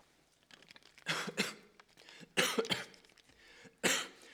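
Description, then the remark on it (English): A person coughs in three harsh, forceful bursts spaced about a second apart after swallowing something the wrong way, with small throaty sounds and breaths in between and no talking. “I swallowed that the wrong...”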